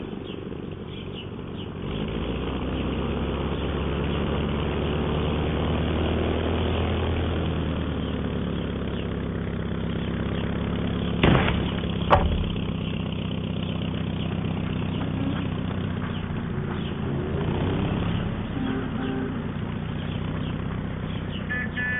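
An old propeller plane's engine rumbles steadily, a loud droning roar with low pulsing tones, as the aircraft taxis out of a yard onto busy Wilshire Boulevard; a couple of sharp knocks cut through midway.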